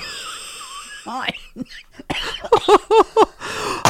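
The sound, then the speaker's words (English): A woman's raspy coughing fit: a few wheezy gasps, then a rapid run of five or six harsh, strained coughs in quick succession, fairly loud, with no talking. “that was that good that she's coughed up a lung.”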